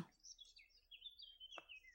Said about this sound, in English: Oh, I love it. Whittering birds.